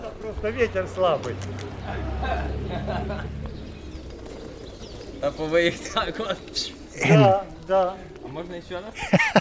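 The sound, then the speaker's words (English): Black and white pigeons coo repeatedly, with brief fluttering wing flaps and a louder burst of flapping partway through as a man throws two of them up into the air over a dirt yard, while a person talks over the birds. “Just threw both of them up in the air. And they're flapping up in the air. These black and white birds.”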